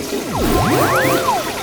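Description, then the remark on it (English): An echoey toilet flush from a portaloo: a steady rush of water with swirling, gurgling tones that sweep up and down in pitch for under two seconds. No voices. “That's when, out of nowhere, I heard the echoey sound of a toilet flush.”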